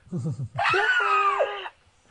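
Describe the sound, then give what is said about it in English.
A voice mimics a scream: after a brief spoken moment, a person lets out a loud, shrill, sustained shriek lasting just over a second, then it cuts off. “Yeah, if you pick this book up, the table screams.”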